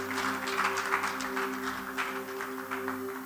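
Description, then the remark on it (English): A crowd breaks into dense, sustained applause for the Lord during a service, many hands clapping at once in a steady wash of sound, with a low steady hum or held keyboard tone running underneath. “Give the Lord a mighty clap of it.”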